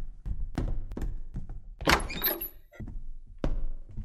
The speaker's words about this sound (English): I knocked the dipper off the table. It scared me.